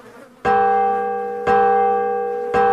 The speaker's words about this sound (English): Do you hear that? It's the Liberty Bell. That must mean that all of the delegates have all reached an agreement.